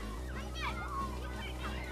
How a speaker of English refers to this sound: I've actually got a little clip kids playing in school.